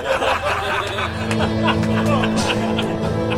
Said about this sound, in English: It's a car advert.